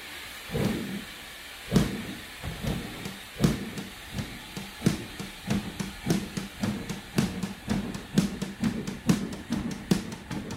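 A song opens with a steady, chugging percussive rhythm of sharp clicks and hissy hits over a low hum, evoking a train rolling along at an even pace, with no singing yet.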